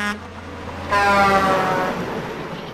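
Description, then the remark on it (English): An 18-wheeler truck's air horn blares loud in one long sustained blast at night, over a steady low engine rumble that fades slightly as it ends. “They had been coming home from a Halloween party when an 18-wheeler came out of nowhere.”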